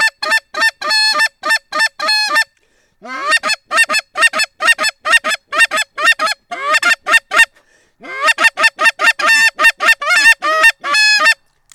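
A flock of geese honks loudly and continuously, with many nasal, overlapping calls in rapid succession, broken by two brief pauses before the clamor resumes.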